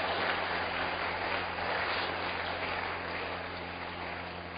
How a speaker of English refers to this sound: Oh, it's a good prayer for you to clap your hands.